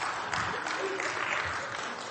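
A crowd applauds, many hands clapping together in a dense, steady crackling wash that holds at an even loudness for about two seconds.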